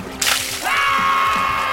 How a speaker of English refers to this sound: pouring gallons of boiling hot baby oil on the crowd at the 10th Annual Universe Pump Bodybuilding Championship at Skag Muscle Beach.